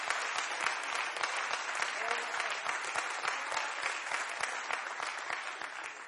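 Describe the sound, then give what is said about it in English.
An audience applauds steadily as a hand clap of praise to the Lord, many hands clapping in a dense, sustained wash with sharp individual claps standing out, continuing at an even loudness throughout. “And everyone said in Jesus' name, let's give the Lord a good hand clap of praise.”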